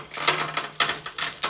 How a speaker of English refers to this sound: So much dice. So many.